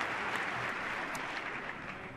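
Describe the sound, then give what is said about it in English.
Sustained applause from a large standing audience before a presidential address to Congress, a dense, steady roar of clapping that holds loud and even throughout with no voices breaking through. “Well, that might be one of the few times tonight that everybody gets up. Thank you. For prolonged applause.”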